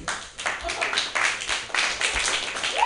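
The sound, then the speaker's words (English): Scattered, thin applause from a small number of people in a stand-up comedy audience, light and polite rather than enthusiastic, with a faint murmur of voices underneath. “I'll take those golf claps.”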